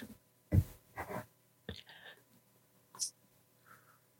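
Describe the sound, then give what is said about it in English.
Quiet, irregular tapping and faint clicks of someone typing out a message, with a few scattered soft bursts and no one talking. “I'm in fact just messaging Chris”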